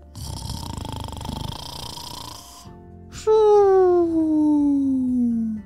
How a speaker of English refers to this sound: He just wanted to sleep. And a hippo, they can snore pretty loudly when they're sound asleep.